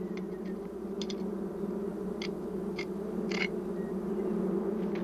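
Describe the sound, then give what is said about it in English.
A steady, dense drone of African honeybees buzzing inside a hive, constant, with a few brief faint ticks scattered over the hum and no voices. “The African bees were prevented from escaping by queen excluders, metal grills that allow workers to pass through but keep the larger queen inside the hive.”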